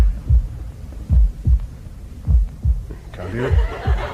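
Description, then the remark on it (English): A muffled heartbeat heard through a stethoscope: deep, soft thumps in loose pairs, repeating steadily, with faint rustling noise creeping in near the end. “It's your heartbeats are vibrating against the casing.”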